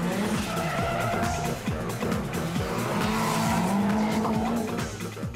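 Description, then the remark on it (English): A drift car slides with a sustained, wavering tire squeal over a loud, revving engine, continuous throughout, with no voices. “Yeah, I like adrenaline and stuff, I guess, but I just love drifting. I just love sliding the car.”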